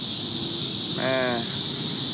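Cicadas buzz in a steady, high-pitched drone that runs unbroken through the whole clip, with a short burst of a human voice rising over it midway.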